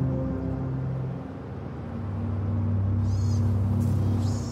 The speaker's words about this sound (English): Outside, cars passing by, people unpacking their packed lunches, there are birds flying around and bees buzzing. That kind of music of life, in a way, it taunts me.